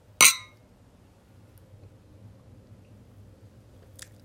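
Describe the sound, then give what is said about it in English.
Glasses of Californian sparkling wine clink once in a toast, a bright ringing tap that fades quickly into a low hum and a faint small tick near the end. “Cheers to ringing that bell.”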